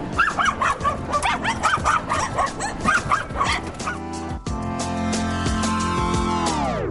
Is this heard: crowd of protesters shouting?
no